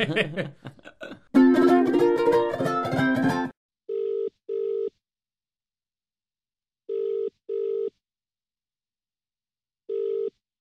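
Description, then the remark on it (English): A brief burst of dense, busy sound gives way to a telephone ringback tone as a call is placed to a friend: three pairs of short double rings separated by silence, clear and steady with no talking. “when we chat to one of our friends, friends from the comedy world, like on the telephone”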